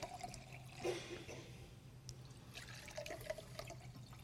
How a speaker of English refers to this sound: You can notice that there's two glasses. If you pour water in each glass,